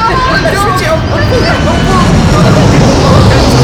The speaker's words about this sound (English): But what's that in the sky, though? It's getting closer. It's coming out, it's turning our way. Whoa. Oh, it's a jumbo jet!